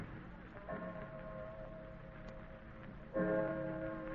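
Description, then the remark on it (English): A clock strikes two o'clock, chiming twice in two resonant, ringing strikes spaced a few seconds apart, the second louder, each tone lingering and fading over a faint background hum. “2 o'clock already.”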